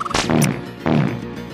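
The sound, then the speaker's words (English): Two cartoonish fart sound effects from a 16-bit platformer video game, each a sharp burst that trails into a low, buzzy rumble, spaced about a second apart with no talking. “He farts a lot, dude.”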